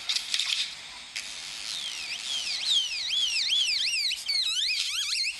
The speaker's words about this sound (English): That was a bird. That was the great-tailed grackle. You can find those in Los Angeles.